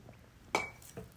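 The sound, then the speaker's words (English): A ceramic coffee cup clinks sharply once with a brief ringing tone as someone takes a sip of coffee, followed by a softer knock a moment later, against a quiet background with no talking. “I'm sitting here with a cup of coffee that I have not had even one sip of.”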